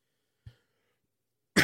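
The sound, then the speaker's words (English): A soft, brief cough sounds into the mic, then after a pause a much louder, harsh cough bursts out at the very end, with no talking. “I'm so sorry about coughing in your ear, especially if you have headphones on.”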